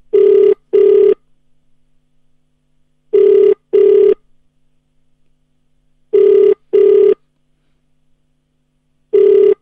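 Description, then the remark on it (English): A telephone ringback tone on an outgoing call as a woman is dialed back: paired steady electronic rings repeat about every three seconds, loud, with near silence between them and no talking. “Okay, it's ringing.”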